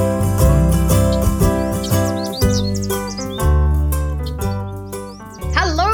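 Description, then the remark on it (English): Quick, high chirps flicker over a steady, beat-driven music track, with a brighter burst of twittering near the end; the birdsong sits mostly under the music. “Crazy birds”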